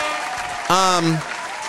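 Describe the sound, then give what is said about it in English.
A steady patter of hand claps, like a short round of applause, runs throughout, with a brief voiced cheer or exclamation rising over it midway. “Hand claps for transparency.”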